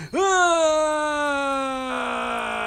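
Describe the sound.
A single loud, drawn-out monster howl from a human voice, swooping up sharply at the start, then holding a steady, slowly sinking pitch for over two seconds. No other talking.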